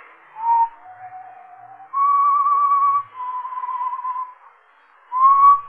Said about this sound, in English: I heard that whistling again. That same tune. I think that's what woke me.